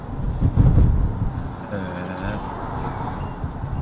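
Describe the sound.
Cars roll by on a city street after the traffic signal turns green, a low engine rumble swelling early as one passes, then easing into steady traffic hum with a brief whining engine note and faint voices; traffic is unusually light, with delivery riders on kick scooters and bicycles about, in strong wind.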